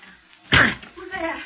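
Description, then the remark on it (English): A flimsy locked door is forced open with one loud crash and a splintering thud, then a voice starts speaking right after. “I'll break it in.”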